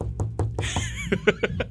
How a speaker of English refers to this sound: And he didn't get hurt like last year, knock on wood, if you can hear.